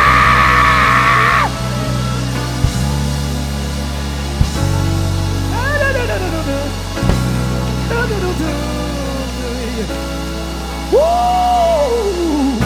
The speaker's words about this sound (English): Scream hallelujah just to prove to the devil you got praise. 1, 2, 3, hallelujah!